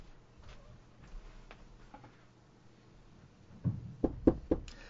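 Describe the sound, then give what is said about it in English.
A quiet, faintly rustling stretch ends in four firm knocks on a wooden door, struck in a quick, slightly uneven rhythm. “the door!”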